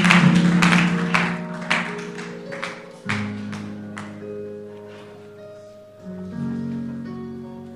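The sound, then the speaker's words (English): An audience gives a clap offering: rhythmic group clapping over sustained keyboard chords, the claps sharp and steady at first, then thinning out and fading while the held chords carry on. “With a clap offering, why don't you take your seats?”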